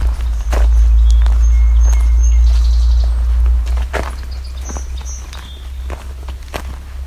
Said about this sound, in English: Coming up on some song sparrows.